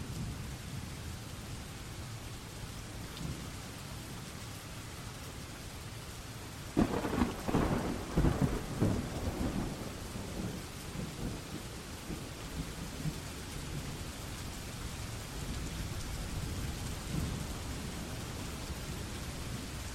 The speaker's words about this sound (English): It's gonna take a second. So it's a nice little subtlety. It's like a legitimate storm is building.